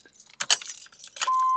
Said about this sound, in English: Oh, no! It was a kind of loud beep.